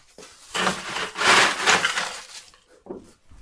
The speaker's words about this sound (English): First step, I'm going to ice down my glass.